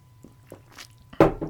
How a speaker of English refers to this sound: Let me drink some water.